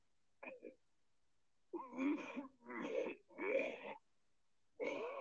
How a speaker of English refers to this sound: That was not coughing. That was puking.